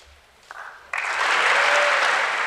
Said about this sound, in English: I was keeping track of the applause lines and how they were received on both sides of the aisle. And when he said that line, this was one of those lines where Republicans stood up and cheered